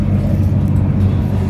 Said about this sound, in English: Now on the connecting intercity train to Trieste, it's like sitting in a twin prop turbo. Listen to that. Yeah, this train isn't exactly young, but it has been refurbished. Despite the noise, it's quite comfortable on board.